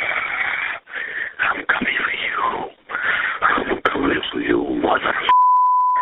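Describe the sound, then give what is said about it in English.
A muffled, tinny voice talks over a telephone line for several seconds in a threatening phone call made in 2011 to an investment fund's staff, then a single steady electronic beep sounds clearly at the end of the recorded call. “Now, the story back in 2011 begins with a threatening phone call.”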